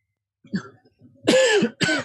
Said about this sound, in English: Okay. It's so hot here. If I start coughing, it's because...